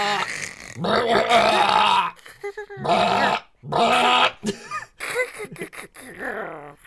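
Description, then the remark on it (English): A person tries to imitate the Chewbacca roar from Star Wars, rolling the R's from the back of the throat: several loud, rough, throaty bursts with a rolling rattle, separated by short pauses, ending in a choppier, sputtering growl. “It's like a rolling of their R's, but from the back of their throat. I just sound like a goat.”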